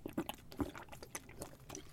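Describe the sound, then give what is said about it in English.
Someone takes a swig of water, with a few quick wet gulps and slurps in an uneven rhythm, fairly quiet, with a brief louder swallow partway through and no talking. “Oh, I'm having a swig of water.”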